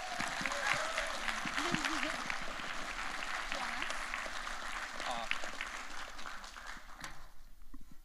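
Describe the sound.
An audience applauds in a steady, dense wash of clapping that holds for several seconds, with murmured voices and a few cheers mixed in before it begins to thin out.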